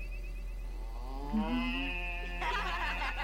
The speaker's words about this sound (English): The cow.